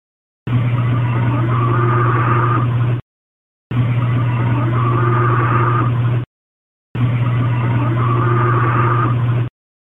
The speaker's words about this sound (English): And at the end of the recording, there was a second growl after the female voice asked if she can go or leave or go inside. I forget exactly what she says. So this is the second growl.